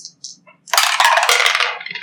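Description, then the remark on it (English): A couple of small hard clicks, then a dense burst of rattling clatter as dice tumble through a new dice tower, loud for about a second before settling. No voices. “So let's try this new dice tower.”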